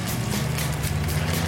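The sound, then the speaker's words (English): A car engine hums as the car approaches on a narrow road through a tree tunnel on a big climb, a low, continuous rumble holding at a fairly loud, even level through the short moment, with no voices over it. “Oh, there's a car.”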